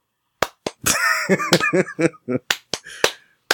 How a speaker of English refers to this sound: Are you guys willing to slow clap for that one, or is that a no slow clap?